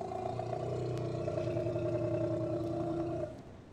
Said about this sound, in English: Notice the similarity between this growl and this growl, which belongs not to a leopard or a member of the cat family at all, but to the Indian elephant. Here it is again.